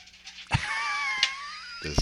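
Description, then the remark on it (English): A dog walks across a microphone, making three heavy bumps and rustles spread over two seconds, while a thin, wavering whine-like tone runs in between. No one speaks. “it sounds like your dog is walking on the microphone.”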